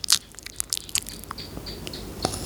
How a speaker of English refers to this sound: Like, honestly, I fucking hate people when they eat into a camera like this.